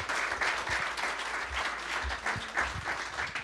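A crowd applauds steadily for a few seconds, a dense wash of many hands clapping at once, fairly close and sustained without pause.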